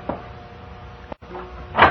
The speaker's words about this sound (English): And then the sitting room door opened.